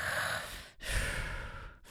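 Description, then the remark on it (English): Someone imitates heavy, airy breathing like a person unintentionally breathing into a phone on a voicemail, with two long breaths separated by brief pauses and no words spoken. “It was just like somebody breathing into the phone, but not like intentionally breathing.”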